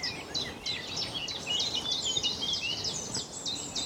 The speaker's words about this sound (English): Just the warbles of blackbirds, chiff-chaffs, blackcaps.